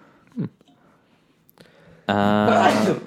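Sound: sneeze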